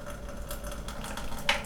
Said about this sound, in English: Now I'm going to open the lid, and it's only like not even a half turn, like a 90 degree turn. And we're going to see how the water pours out.